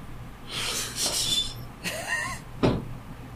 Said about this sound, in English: If that's the door to Mark's room opening, tell him he has more work to do now.